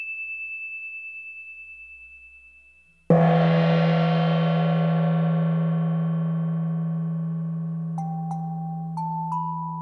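A high, steady ringing tone fades, then a single deep meditation bell is struck, blooming into rich, shimmering overtones that decay slowly over several seconds while faint higher chimes sound near the end.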